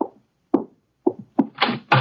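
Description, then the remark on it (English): Several firm knocks on a wooden door as guests, including Inspector Kramer, arrive, unevenly spaced, followed by a couple of brighter, noisier thumps at the end. No voices. “Archie, Archie, the door, our guests are arriving.”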